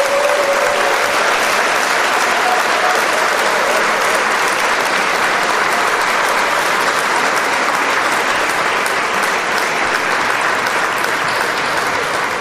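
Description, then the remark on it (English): Sustained applause from a group celebrating a beer's perfect rating, dense steady clapping at an even loudness throughout, with no voices standing out above it. “I think we need to have a round of applause or something.”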